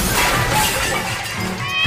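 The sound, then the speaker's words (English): A loud, thundering crash as a heavy stone, lifted high above his head with a grunt, is released and dropped in front of a crowd in a grassy area: a dense burst of smashing noise with a rumbling low end that fills the whole moment without letting up. “He grunts, every muscle tensing, veins popping all over his body and on his face, tusks gritted against each other as he lifts the stone high above his head and releases it with a thundering crash.”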